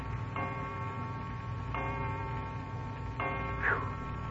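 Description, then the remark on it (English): A clock strikes three slow, ringing chimes, each tone lingering into the next, with a soft steady ticking running underneath. No one speaks. “O'clock, and we were going to bed at 8:30.”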